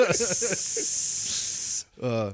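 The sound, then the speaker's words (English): A person imitates a sizzling hiss with their mouth, a steady bright hiss lasting under two seconds with some voicing at the start, followed by a short spoken word. “Sizzling.”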